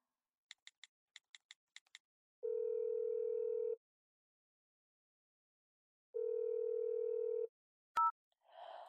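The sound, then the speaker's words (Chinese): A quick run of dialing clicks as a phone call is placed to a mother, then two long, steady ringback tones with a pause between them, ending in a sharp click as the call is picked up. No one speaks. “还是打个电话问一下吧。”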